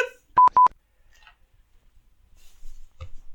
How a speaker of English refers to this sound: Oh, that was my phone.